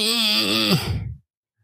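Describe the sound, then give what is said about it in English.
A voice imitates a dial-up modem connecting: about a second of loud, wavering, buzzy screech mixed with harsh hiss, pitch warbling up and down before cutting off abruptly into silence. “But think of that old modem.”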